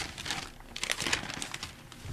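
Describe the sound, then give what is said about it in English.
Steady rustling and crinkling of the pages of The Times newspaper being handled and folded, with bursts of crisp crackle over about two seconds and no voices. “I folded the corner over.”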